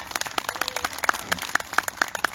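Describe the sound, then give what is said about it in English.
A crowd of people claps for Father's Day, a steady scattered patter of many hands, lasting a couple of seconds with no voices over it. “So yeah, you can do a clap for that.”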